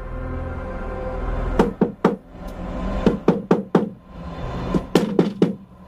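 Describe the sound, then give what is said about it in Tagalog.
Loud, sharp knocks on a bedroom door come in quick clusters of three or four, pausing between each burst, against a low background hum with no voices. “Sunod-sunod ang malalakas na katok sa kanyang pinto.”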